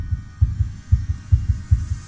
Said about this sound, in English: She sees black pus seeping from his eyes. his heartbeat begins to race.